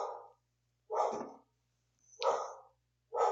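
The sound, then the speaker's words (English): The speaker's female dog barks repeatedly in short, evenly spaced bursts, four barks in quick succession with brief silences between them, moderately loud, with no talking. “Oh, my dog's barking.”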